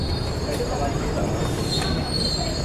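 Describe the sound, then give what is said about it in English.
A subway train's wheels squeal continuously in a thin, high-pitched whine over a loud, steady rumble of the carriage, unbroken for the whole moment, in the Paris subway. “In the subway, for example.”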